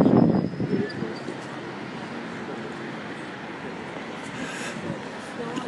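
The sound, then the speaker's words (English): A heavy lorry rumbles past on a street, loudest at first and then easing into a steady, low roar of engine and road noise. “Lorry passes by.”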